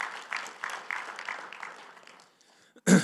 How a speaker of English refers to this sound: Please give our other panelists a round of applause.